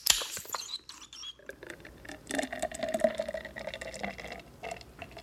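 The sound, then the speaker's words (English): Jacuzzi water on a boat off Key West in the Florida Keys bubbles and churns steadily, a busy, continuous fizzing and gurgling that lasts the whole stretch without any voices over it. “The fact that we're sitting right here in a jacuzzi right outside your suite on the rock boat, and we have this freaking awesome view behind us.”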